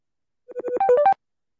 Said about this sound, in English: No, here's the phone call now. Okay.